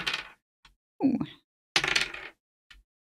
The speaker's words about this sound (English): Tell me about damage. And that's rolling the dice twice, so...